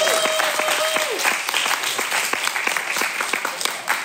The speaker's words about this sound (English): Let's give a round of applause for our second presenting.